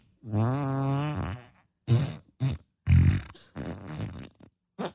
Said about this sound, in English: Would you like to hear another fart? No, thank you.